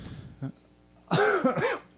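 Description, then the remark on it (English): After a brief quiet stretch with a soft throaty sound, a person turns their head away from the microphone and lets out two or three harsh, raspy coughs in quick succession, moderately loud, with no speech around them. “Is that why you turned your head and coughed? I didn't want to cough into the mic.”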